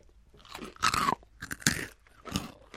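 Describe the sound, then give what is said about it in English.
Crisp, airy crunching of Moon Cheese puffed cheese snacks, little puff balls, being chewed in three separate bursts, each a dry crackling chew with brief pauses between, fairly loud and with no talking. “to point out to our listeners out there, the moon cheese is little puff balls and doesn't look like a chip at all.”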